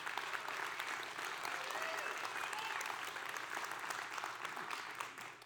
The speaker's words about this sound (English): So if we can, let's give a round of applause to Pastor Terrell for just faithfully leading this church.